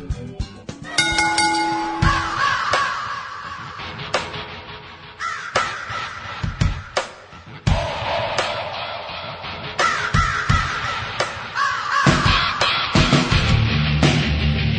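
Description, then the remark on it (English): Loud wrestling entrance theme music, dense and continuous, with harsh crow caws repeating throughout in irregular bursts over the busy backing. No one speaks. “is this WCW Raven? You know what, I'm not sure. Because I'm not sure he ever had real, like, his own theme music.”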